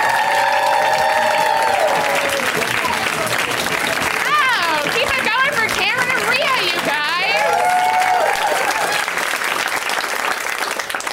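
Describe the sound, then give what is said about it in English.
A large audience applauds steadily while loud whoops and cheers rise over the clapping, swelling in the middle before settling back into sustained applause, as a performer is introduced on a show. “And you can even start clapping.”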